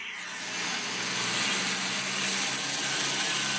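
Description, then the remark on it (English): A San Bernardino County Sheriff's Department police helicopter passes overhead above a residential neighborhood, its engine a steady, broad droning roar with a low hum underneath that swells slightly and holds for several seconds. No one speaks. “Oh, do you hear that overhead? That's the San Bernardino County Police helicopter, Sheriff's Department helicopter.”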